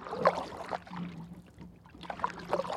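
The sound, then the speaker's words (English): Canoe paddle strokes dip and swish through the water of the Feather River, a few splashy pulls, then a brief lull before two more strokes, over a soft steady water murmur. “We paddle on for a few more tranquil miles.”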